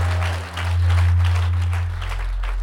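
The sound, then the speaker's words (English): An audience claps together, a dense, uneven patter of many hands that carries on throughout, layered over a loud, steady low drone of bass tones. “Those who are clapping, a better person is showing up in your life.”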